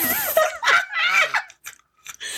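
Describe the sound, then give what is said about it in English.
A throaty burp rumbles out amid bursts of laughter as a question card is read during a card game, followed by a few short, faint clicks and a brief return of noise at the end. “In case y'all didn't catch that, repeat the question over the laughter and the burp.”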